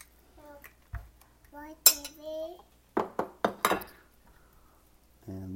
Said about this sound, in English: Chop up some cilantro to go on our tacos, right, baby?